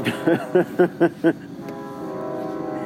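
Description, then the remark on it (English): A train horn sounds outside: five short, evenly spaced blasts followed by a long, steady drawn-out tone, moderately loud. “I know why horns. Trains have horns.”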